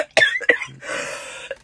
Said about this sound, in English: All right, she's just going to do this for the rest of the time. So we got coughing attack is coming!